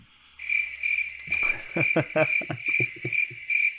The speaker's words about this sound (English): Go ahead and give yourself the crickets on that one.